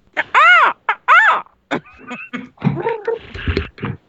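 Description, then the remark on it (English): Two loud, drawn-out cooing calls, seemingly a human voice imitating pigeons, sound in quick succession, followed by a short stretch of people talking. “Fucking pigeons, where'd that come from?”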